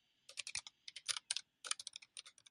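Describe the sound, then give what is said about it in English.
Rapid, crisp clacking of keys on a mechanical keyboard in irregular bursts of quick strokes with brief pauses between them, no voices. “I have a mechanical keyboard. You want me to put the mic up to it and type?”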